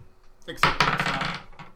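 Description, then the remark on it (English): A twenty-sided die hits a hard tabletop with a sharp clack, then rattles and tumbles for about a second before settling on 10, followed by a faint final tick. “Roll a dice to see how nice your accommodations were last night, because they're no way consistent.”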